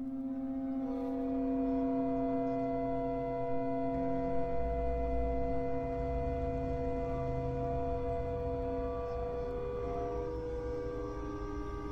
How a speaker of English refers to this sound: But the point is it makes you very aware of that. It amplifies these tiny little shifts and makes it kind of sound like you're in a terrifying, creaky boat or something.